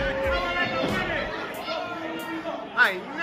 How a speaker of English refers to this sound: The crowd was really with Team Thick and Juicy. Like, they was loving it. Hear these chants.